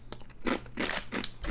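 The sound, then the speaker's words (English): Crisp crunching as someone bites into and chews thin garlic bread chips, several bursts in a steady chewing rhythm with no talking. “They look like thin croutons. Mmm. Oh yeah. Garlic and bread.”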